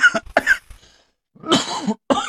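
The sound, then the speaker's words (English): A person coughs after smoking from a pipe, in a series of harsh bursts: two quick hacks, a brief pause, then a longer raspy cough followed by one more. No talking. “I remember I used to like give dart eyes at people when they'd cough on the stream.”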